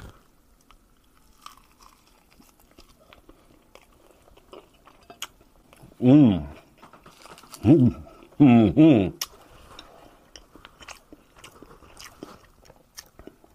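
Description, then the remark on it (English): Muffled, quiet chewing of a chicken wing topped with hot sauce, with the mic covered, broken by three short voiced hums of appreciation around the middle, then fading back to soft mouth noises. “And we'll do what I've done before, and we'll try to cover the mic so I don't sound too disgusting while I'm chewing on this.”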